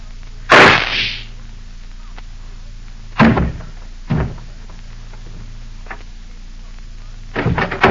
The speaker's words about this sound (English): I heard a shot. What happened? Oh, I see. But how'd you shoot him?